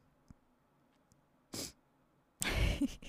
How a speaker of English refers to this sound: My little sniffles.